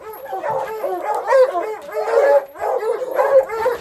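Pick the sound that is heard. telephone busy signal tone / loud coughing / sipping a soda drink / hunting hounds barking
hunting hounds barking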